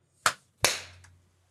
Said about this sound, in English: I need another clap.